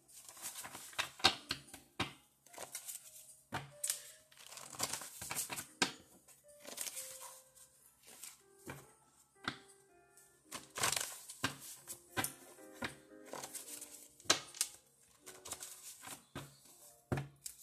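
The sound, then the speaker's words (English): Crisp paper rustling as a large stack of paper index cards is shuffled repeatedly and diligently, with irregular flicks, slaps and riffles continuing steadily throughout, no voices. “There's so many cards here, so I have to shuffle them very diligently. And these are index cards, so they're like paper.”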